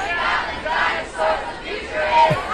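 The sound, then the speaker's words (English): A protest crowd of many voices at an Earth Day demonstration chants and shouts together in rising, rhythmic bursts, roughly three swells of loud collective yelling with no clear words standing out. “You want to hear one more chant?”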